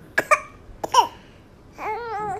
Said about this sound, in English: And yeah, maybe he did have a coughing fit too.